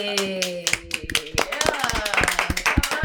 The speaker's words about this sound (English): Yeah! Come on, come on. Everybody clap. Everybody clap. Round of applause.